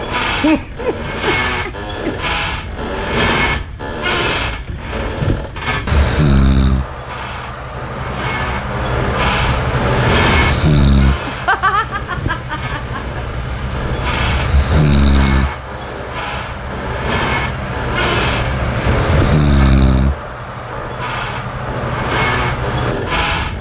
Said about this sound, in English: the reason Linda calls it the Cher snore